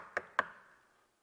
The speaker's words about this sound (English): Have you ever gone to somebody's house and knocked one time? I doubt it.